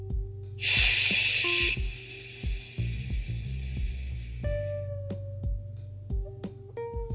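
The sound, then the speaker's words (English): A voice makes one drawn-out, breathy shushing sound, a steady hiss like white noise. It starts loud, then fades and trails off over a low, tonal hum in the background. “shh and have someone listen to that and to be comforted by that sound.”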